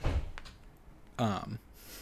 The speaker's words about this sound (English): That was the package getting dropped off. That's what you heard in the background. Oh. Right? Okay, I like that. I'm doing some Foley work for this one.